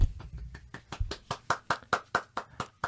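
A steady run of about a dozen sharp hand claps at a brisk, even rhythm, each one crisp and bright, with no talking over them.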